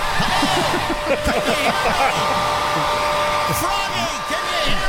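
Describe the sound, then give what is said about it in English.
A hair dryer, held about a foot from a person's left temple, whirs loudly and steadily for the whole stretch, a constant airy roar with a faint whine, while muffled voices and a bit of chuckling murmur underneath. “Well, if you put a hairdryer on a bed, if you block the in.”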